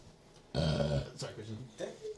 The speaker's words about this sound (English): So I lost my wait, hold on, let me burp real quick.